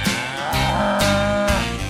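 A cow moos in a long, drawn-out low call, loud, over a steady rhythmic beat that thumps about twice a second.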